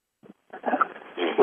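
A dog gives a brief, soft yip, then a longer run of whiny, strained whimpering that grows louder toward the end, with no talking.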